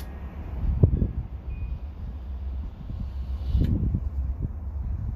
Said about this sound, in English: It's windy. It's been really windy here in the suburbs of Chicago, probably downtown, too. It's really crazy.